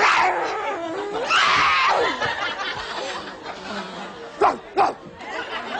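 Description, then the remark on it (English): A woman pretending to have rabies imitates a dog, letting out whiny yips and growly barking sounds, ending with two sharp, loud barks close together, with snickering laughter mixed in. “Now, she pretended she had rabies and then started barking like a dog.”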